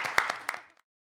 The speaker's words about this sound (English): Yes, clap for us.